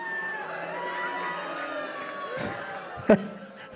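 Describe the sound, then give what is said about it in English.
A comedy festival audience in Washington, D.C. boos the mention of the government shutdown, a sustained, low, droning chorus of many voices, steady throughout, with a sharp louder burst near the end before it starts to fade. “I think you're booing the government.”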